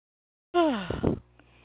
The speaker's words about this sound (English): Making me yawn.